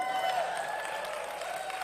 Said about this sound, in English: How many of you, that's the first time you've ever clapped when somebody said, I'm an accountant?